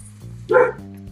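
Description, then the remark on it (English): A single short dog bark rings out in a garden over a low steady hum, with no talking in the brief moment. “I'm sitting in my garden, did I tell you? With my dogs.”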